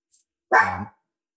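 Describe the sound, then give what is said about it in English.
A neighbor's dog gives one sharp, loud bark, with no voices around it; a faint, brief hiss comes just before. “Or asking about the neighbor dog.”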